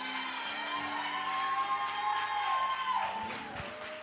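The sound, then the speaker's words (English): A large crowd claps and cheers steadily for several seconds, a dense wash of applause with sustained organ-like tones ringing through it before easing slightly near the end, applauding for their pastor during a church service. “Come on, clap your hands for your pastor.”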